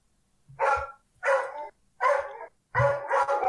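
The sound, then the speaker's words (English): A dog barks loudly, about five sharp barks in a steady rhythm with short pauses between them, the last two running together. No one is talking. “I don't know if because of the barking, you guys can pick it up”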